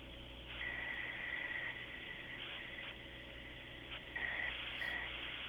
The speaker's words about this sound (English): Oh, I don't like that. It's creepy. That's a person fucking breathing in my phone.